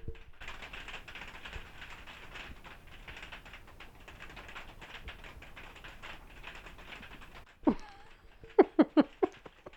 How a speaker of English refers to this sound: Well, I think we're going to wrap this one up before the rain gets too heavy. Do you want to hear the rain?